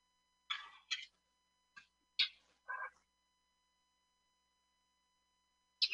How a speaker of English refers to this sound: Well, I guess they didn't bleep blurp it, but you hear like the sound, the rhythmic clicking and the beeping